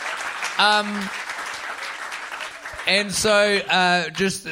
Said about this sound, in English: Give yourselves a round of applause. Truly, that applause is for you. You're amazing. Thank you.